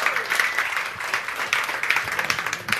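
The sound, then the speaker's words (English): An audience applauds a man for his birthday, a dense wash of many hands clapping at once with no pauses, fairly loud and sustained throughout. “So let's give him a big, big round of applause for that.”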